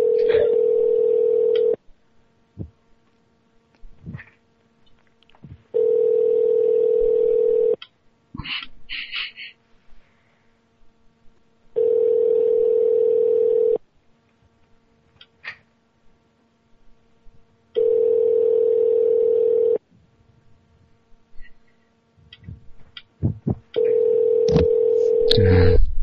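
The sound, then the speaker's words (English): A telephone ringback tone on a call to a hotel repeats five times in steady two-second bursts separated by pauses, the call going unanswered while the man at the other end stands staring at the phone, with faint clicks and small noises in the gaps. “He's just standing there, staring at the phone. Nope, just not going to pick it up.”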